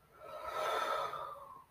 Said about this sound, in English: So deep breathing, yes, you can do that anywhere. We can breathe in, breathe out right here. Let's inhale, y'all. Now exhale. One more time. Inhale. Now exhale.